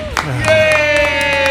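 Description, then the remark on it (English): An audience claps and cheers in a steady burst of applause, with sharp hand claps cutting through a sustained, bright tonal note that holds throughout. “Making everyone clap for me”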